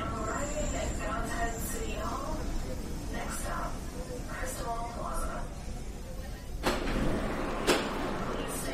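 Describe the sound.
Steady rumbling subway car ambience with a constant low roar, faint murmuring voices in the background, and a couple of sharp rattles and clacks near the end.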